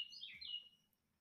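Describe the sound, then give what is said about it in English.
A single short bird chirp, bright and high-pitched with a quick warbling sweep, lasting under a second before fading into quiet. “The bird wants to join our podcast. He's listening.”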